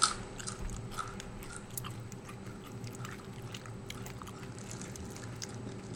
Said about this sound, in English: All right, everybody, put a food in your mouth, and we're going to all chew together in unison. Everybody chews at the same rate. Mm-hmm. I say about 3 chews every second, right? Okay. All right, go.